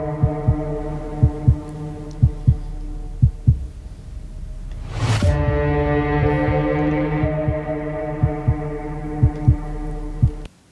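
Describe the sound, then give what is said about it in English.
A slow, steady heartbeat thuds in paired beats beneath a sustained, droning musical hum from a film trailer for a movie directed by John Krasinski, briefly interrupted by a rising whoosh midway before the pulse resumes. “I hope you enjoyed that ominous music and the sound of a heartbeat.”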